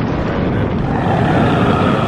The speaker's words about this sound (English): It roars, just like all sharks in video games.